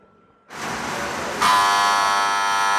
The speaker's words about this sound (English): There is our shot clock buzzer, which is telling us we're out of time on this episode of Opera Box Score.